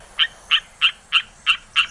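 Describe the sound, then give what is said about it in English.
A rocket frog calls in a steady series of six short, sharp chirping notes, evenly spaced and fairly loud, with no talking and little else in the background. “The Tori and Nasuto rocket frog.”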